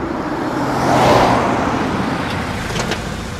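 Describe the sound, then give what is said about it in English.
Two cars rumble, their engine and road noise swelling for a moment and then settling into a steady, lower hum as they slow to a stop in front of Santa Cruz Airport. No one speaks. “Finally, both the cars came to a halt in front of Santa Cruz Airport.”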